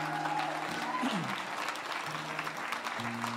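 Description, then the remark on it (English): A large church audience claps steadily and loudly for members aged 19 to 39, a dense wash of applause, with a low sustained organ-like tone and a few faint voices beneath it. “One more clap for 19 to 39.”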